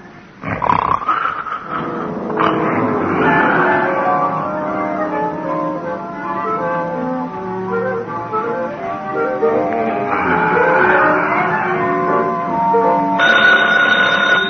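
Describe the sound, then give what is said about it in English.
A telephone bell rings loudly, its ringing mixed into a dense, continuous wash of other sound that lasts the whole stretch. “Oh, phone”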